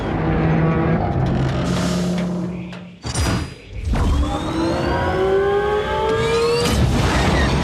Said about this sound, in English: And you hear the end, like, it's just no music, just the sound design and the atmosphere, and then it goes silent, and then you hear the engines, like, activate again.